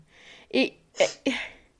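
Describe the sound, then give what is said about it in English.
Three quick, breathy sniffles, each a short wet burst of air, with a soft hiss of breath leading into them and no talking. “I'm sniffling.”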